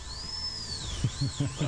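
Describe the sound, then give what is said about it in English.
A high-pitched dental drill whines steadily throughout, its pitch rising and dipping slightly, with faint voice-like murmurs in the low range toward the end. “It had to be done, guys. Drill, fill, and bill.”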